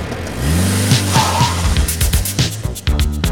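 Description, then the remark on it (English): A car engine revs up loudly and pulls away, its pitch climbing as it accelerates, with a brief tire squeal and rough mechanical bursts toward the end. No one speaks. “He had a car, and I just went along with him without paying too much attention to exactly where we were.”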